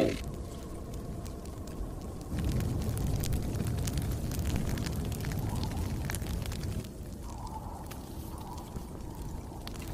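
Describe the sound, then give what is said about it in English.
A campfire crackles steadily with frequent sharp pops and snaps over a low rumbling roar that swells louder in the middle stretch, close and continuous, with no voices. “Ezra wakes up around a campfire, and Chopper is powered up.”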